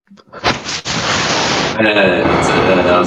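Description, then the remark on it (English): Loud, rushing breath blown straight into a microphone by a person, sounding windy: a brief puff, then a long, steady hiss of air that shifts slightly in tone partway through and continues for several seconds. “you breathing through your mic?”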